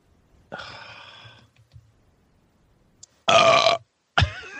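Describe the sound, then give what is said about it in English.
Three loud burps in a row with short gaps, the first long and drawn out, the second harsh and strong, the third cut short, with no talking. “I'll fill the silence with my burps.”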